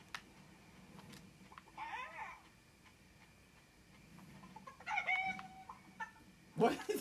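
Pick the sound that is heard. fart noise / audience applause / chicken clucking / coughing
chicken clucking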